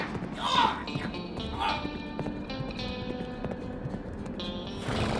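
Horse hooves clip-clop steadily, with a short whinny rising near the start and again a moment later over a low, rumbling background.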